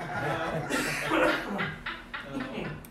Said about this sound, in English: Steve gave me this coughing spell I get.